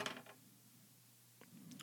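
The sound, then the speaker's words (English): Dice clatter on a hard table for an attack roll in a tabletop game, a quick burst of light, sharp clicks, then fall silent before a few more faint taps near the end. Quiet, with no talking. “I rolled a 3 plus 9, just hits a Witherlings 12.”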